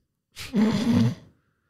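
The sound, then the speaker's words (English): A person lets out a single yawn, starting with a breathy inhale and stretching into a drawn-out, voiced groan before fading to quiet, with no talking. “Let's FMK because, yeah, I just yawned.”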